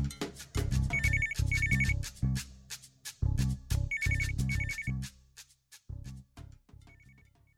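A telephone rings in short, bright double trills, two rounds of rings over a thumping rhythmic backing, with a fainter ring trailing near the end.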